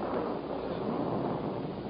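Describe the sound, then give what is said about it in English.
A thunder rumble, a steady, heavy, noisy roar that holds at an even loudness for the whole stretch with no distinct crack, heard on its own without any voices. “What was that? Just thunder.”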